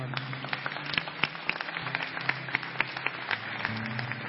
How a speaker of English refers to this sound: Just lift your song sheet up. What a gift. Let's clap for these people.